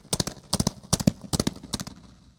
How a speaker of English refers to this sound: These reverberations could even turn the sound of hooved feet into a herd of galloping horses.